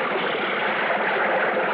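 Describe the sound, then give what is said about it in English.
A diver comes back up to the water surface: a steady rush of churning, splashing water fills the short moment, fairly loud, with no voices and no clear pauses or individual splashes standing out. “Then finally I came back up to the surface.”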